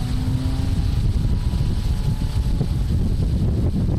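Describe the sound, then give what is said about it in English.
A motorboat cutting across the Amazon River near Manaus, Brazil, in the dry winter season: a steady, heavy low engine rumble mixed with gusty wind buffeting, holding an even loudness throughout with no voices. “The breeze feels great as the motorboat cuts across the Amazon.”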